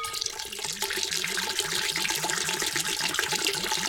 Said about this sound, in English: Now I'm pouring both bottles at the same time. But there's a little bit left in this one. So I've got to go in there.